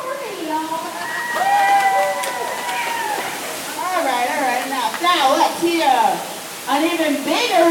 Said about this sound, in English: We're walking behind the waterfall. Let me see if I can record some of this.